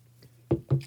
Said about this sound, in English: I'm gonna have a quick sip of water before we start this one.